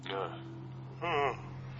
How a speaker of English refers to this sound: You made me yawn again.